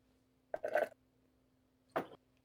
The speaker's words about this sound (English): Who's slurping out of a straw? Me. You drinking water? Nope. I found a new coffee.